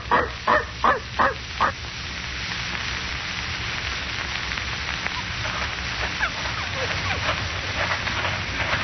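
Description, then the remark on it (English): A dog, Rex, pulling toward the door, gives five sharp, evenly spaced barks, then falls into faint, high whimpering whines over a steady hissing background. “Cranston, Rex is pulling you toward the door. Yes. You keep the other dog here, Mrs.”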